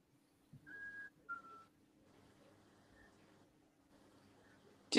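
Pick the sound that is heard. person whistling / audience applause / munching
person whistling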